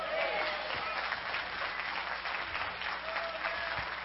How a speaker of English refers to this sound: But listen to me before you applaud, and then you better erupt in applause.